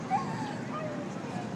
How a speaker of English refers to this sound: The dog agrees. The dog. And the dog in the background just capping it off.